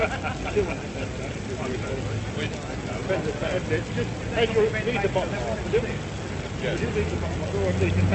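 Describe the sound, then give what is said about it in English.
Steady street traffic rumbles continuously at moderate loudness, with people talking over the constant hum of passing vehicles, as BBC staff prepare to record the sword bearer and acting common crier reading a royal proclamation. “That traffic.”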